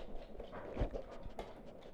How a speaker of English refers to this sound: Then silence for a moment, before he heard the sound of dog paws pacing back and forth. Damn, he left the dog in the hall.